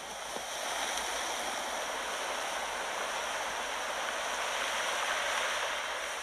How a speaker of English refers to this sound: she sent the sound near her favorite cliffs in New England. It's the waves crashing along the shoreline.